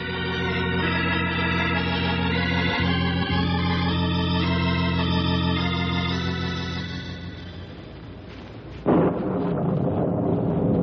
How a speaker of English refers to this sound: That storm isn't going to wait too long to rain on us.